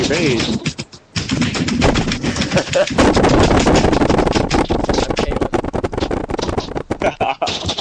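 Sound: typing on a keyboard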